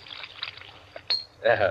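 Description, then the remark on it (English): Soda is poured into a glass with a steady, fizzy splashing hiss for about a second, followed by a brief glassy clink, and then a voice starts speaking. “And now, a little soda in mine.”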